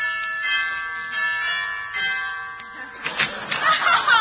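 A doorbell chimes with ringing, sustained tones that hang in the air, followed by a burst of brighter, noisier clatter near the end.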